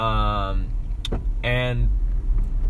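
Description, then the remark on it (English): Steady low road rumble fills a moving car's cabin throughout while driving among other cars, with brief tonal voice-like sounds and a couple of short clicks over the constant engine and tire drone. “Yeah, I'm just trying not to hit any cars right now.”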